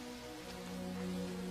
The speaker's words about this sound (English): I wish the rain would stop just once. It can't rain all the time.